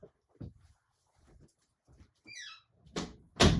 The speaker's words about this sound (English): I had to shut my door.